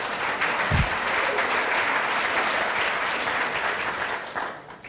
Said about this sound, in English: Let the record show that that was the largest applause line of this presentation.